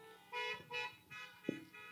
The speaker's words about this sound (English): Is everybody ready? We got a few more cars in the parking lot. Let's hear those horns honking.